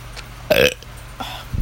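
A single loud burp erupts for about a quarter second, followed by a softer gulping vocal sound and a low thump at the end.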